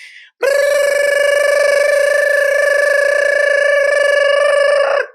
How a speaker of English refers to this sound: That is the gibberish siren